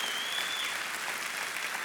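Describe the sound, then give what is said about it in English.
An audience at a church service applauding to express gratitude to those who serve: steady, dense clapping from many hands that holds an even loudness throughout, with no voices rising above it. “Can we at every campus express our gratitude?”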